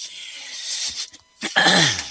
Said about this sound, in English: Excuse me. I just didn't mean to cough at everyone.